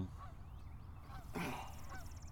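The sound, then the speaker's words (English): A bird calls with several harsh, honking cries spaced across a couple of seconds, one louder burst in the middle, over a low steady background rumble. “Oh, there comes your favorite bird.”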